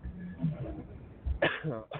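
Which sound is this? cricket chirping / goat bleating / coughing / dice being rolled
coughing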